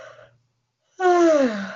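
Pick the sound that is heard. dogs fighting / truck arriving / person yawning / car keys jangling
person yawning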